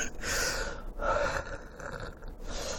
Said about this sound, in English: Do you ever get that weird situation where sometimes you cough so much that when you exhale, you hear like bubbles and crackling? I just heard it just now.